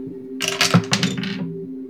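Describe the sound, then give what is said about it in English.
A quick cluster of hard clattering impacts as dice roll down a dice tower, hit the dice box and bounce out of it, rattling for about a second, with one knock as a die hits the microphone, over a steady low electrical hum. “So it rolled down my tower, hit the dice box, bounced out of the dice box, and hit the mic.”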